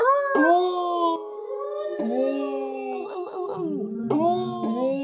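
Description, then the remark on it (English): Several wolves howl together in long, sliding, wavering tones that overlap in a steady chorus, with a brief yipping flutter midway and a fresh howl rising near the end. “That's what wolves sound like.”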